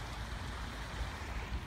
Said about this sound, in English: And I crossed a little stream to sit here.